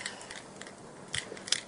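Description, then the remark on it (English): A bunch of keys, including a house key and keys for cars and an office, jingles softly as it is handed over, a few light metallic clinks and rattles spread over a moment, with no one speaking. “Okay, I'll give you the key to my house.”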